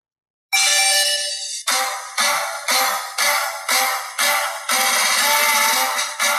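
Pokémon evolution music: bright, chiptune-like electronic tones open with one held note, then a steady series of evenly pulsing notes, loud and with no voices over it.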